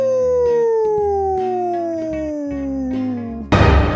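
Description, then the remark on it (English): A voice imitates a wolf howl: one long, loud, steadily falling wail over a pulsing low backing beat, cut off by a sudden burst of noise at the end. “The Wolf.”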